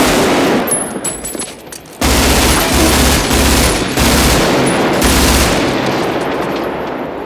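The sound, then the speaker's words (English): Loud, sustained bursts of automatic gunfire from a gunfight scene in a Michael Mann film, with audio recorded on set, rattle almost continuously, sharp reports blurring into a dense, echoing roar that rings and reverberates between volleys, fading slightly toward the end. “Michael Mann did a thing for all of the gunfight scenes, which he recorded the audio on set.”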